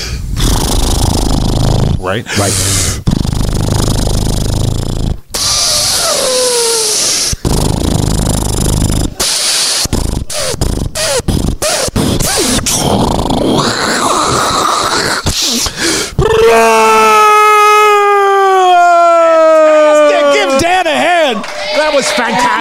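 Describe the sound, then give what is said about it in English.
A person imitates a propeller with loud, choppy buzzing and sputtering, then shifts into a sustained, whining jet-plane sound that swoops up and down in pitch. Brief speech is heard. “I want you to go from propeller to jet plane.”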